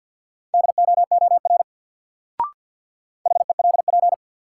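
Rapid Morse code beeps at 50 words per minute, sending single words in a word drill, at one steady mid pitch, a quick run of short and long tones, then a pause broken by a faint click, then another fast burst of code.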